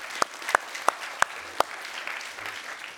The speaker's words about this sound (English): Yeah, we can. Yeah, let's clap for that.